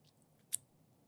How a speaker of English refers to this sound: Oh, and that was a good crunch bite.